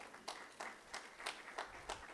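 Steady, evenly spaced clapping from an audience responding to a statement about the Christian faith, about seven sharp claps over two seconds, heard faintly with no talking.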